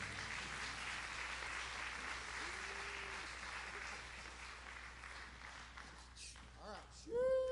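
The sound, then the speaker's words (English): An audience welcoming a pastor claps and cheers steadily throughout, a dense wash of applause with scattered whoops, and a few louder shouts and rising voices breaking through near the end. “everybody just give him a great big sheesh”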